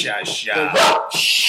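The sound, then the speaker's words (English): John's dog barks loudly in a quick run of several sharp, harmonic barks, the bursts coming back-to-back with little pause between them. “That John's dog is just could be a bitch.”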